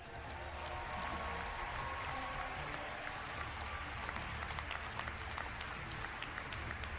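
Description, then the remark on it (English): A smattering of applause from a crowd as Montana Governor Steve Bullock is introduced: scattered clapping, steady and moderately loud for several seconds, with a faint background murmur and no clear voices over it. “That was a smattering of applause for Steve.”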